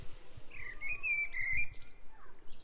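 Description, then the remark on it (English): A male blackbird sings a clear, whistled phrase that rises and holds steady before ending in a brighter flourish, heard outdoors over low rumbling background noise. “That's a male blackbird.”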